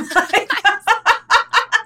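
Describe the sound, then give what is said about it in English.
Birds outside a house call in a quick, steady run of about nine harsh, squawking chirps, fairly loud, with no talking over them. “No, they're birds outside my house.”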